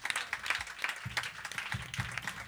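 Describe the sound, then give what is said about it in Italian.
An audience applauds with dense, steady clapping that fills the whole stretch at moderate volume, with a faint low murmur of voices underneath. “Sì, sì, di il respiretto prima dell'applauso, vero?”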